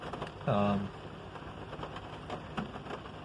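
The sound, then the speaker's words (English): Heavy rain pours down steadily in a dense, hissing wash of noise, broken briefly near the start by a short humming tone and a fainter one later. “And it's raining really hard, but I'm going out to get a couple things.”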